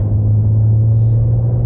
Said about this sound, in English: And there's a nice bass exhaust tone to it. Sounds great. Sounds like a V8. Really does.